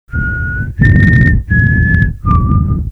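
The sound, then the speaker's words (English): A person whistles four sustained notes into a microphone, each held steady with short breaks between, over a breathy, rumbling background with no speech. “So the one thing you do is not breathe into a mic, so we're just going to whistle instead.”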